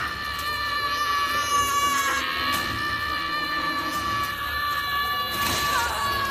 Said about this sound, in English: I do have the sound clip from Baby Wolverine where he thinks his dad's been killed and he berserkers out. And I just love this kid's scream because he totally watched Hugh Jackman doing this 100 times and he does it justice.